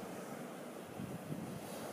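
Steady, broad rushing of Pacific Ocean surf on the shoreline at Point Reyes National Seashore, just north of San Francisco, a continuous wash that swells slightly midway, with some wind noise mixed in and no voices.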